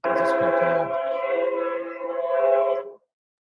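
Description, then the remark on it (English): A train sounds a loud, steady horn-like blast of layered tones lasting about three seconds before stopping abruptly, with a low rumble faintly beneath it at the start. “So I'm hearing a train there. Is that a train on your end?”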